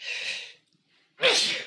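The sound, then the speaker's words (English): Two loud sneezes separated by a brief pause, the second sharper and more explosive than the first, with no talking in between. “Oh, you're one of those multi-sneezers, huh?”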